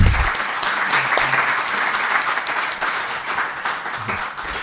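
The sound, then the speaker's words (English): An audience applauds a group of poets steadily and fairly loudly, a dense wash of many hands clapping that holds for several seconds without letting up. “I think we just need to give another hand clap for all those wonderful poets.”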